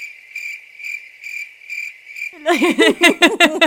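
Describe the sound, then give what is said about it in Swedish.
Crickets chirp in a steady, high, pulsing trill for a couple of seconds, then a louder, lower warbling call cuts in and dominates the rest. “Det var det sista jag hörde från den veden. Såna syrsor.”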